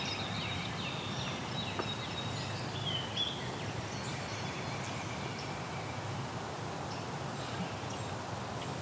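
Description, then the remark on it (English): Faint, thin, high buzzy warbler notes from a parula come and go over a steady wash of low outdoor noise, with one slightly brighter phrase in the middle. “So the Perula goes zeet like that.”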